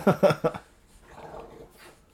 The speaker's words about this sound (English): God, these dogs are fucking wild.